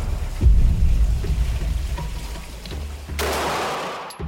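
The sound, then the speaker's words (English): A 12-gauge shotgun blast goes off with one sharp, heavy boom, followed by a long low rumbling echo that rolls away. Near the end comes a burst of hissing noise. “the blast from the Rudolph's 12-gauge shotgun would have been ferocious”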